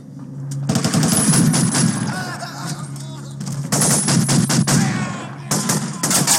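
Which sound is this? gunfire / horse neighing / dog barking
gunfire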